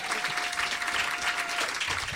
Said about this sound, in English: Thank you for the clap.